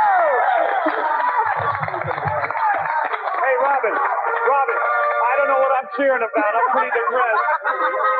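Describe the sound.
A game show studio audience cheers and claps loudly and continuously, a dense wash of excited voices and applause that fills the whole clip with only brief dips.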